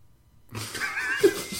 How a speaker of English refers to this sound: Oh my god, that was my dad clearing his throat upstairs.